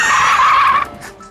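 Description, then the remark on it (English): A loud, high-pitched tire screech as a car brakes hard and skids, holding steady for nearly a second before cutting off into a brief fading rumble. No voices. “I'm slamming on my brakes.”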